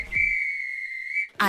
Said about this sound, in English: If this were a real bit of extra time, this is when the ref will blow the whistle because it's finished.